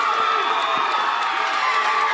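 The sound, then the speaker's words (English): A large baseball stadium crowd roars and cheers at a championship game in a loud, steady wash of voices, with whoops and shouts rising over the dense, continuous din throughout. “Listen to that crowd.”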